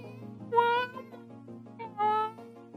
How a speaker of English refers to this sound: And the young baby ones fucking sound like infants. And it's incredibly annoying. I wish they would just shut the hell up every time they go off crying.